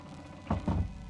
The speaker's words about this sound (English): That's right. Close the door. Close it tight. Go on, close it.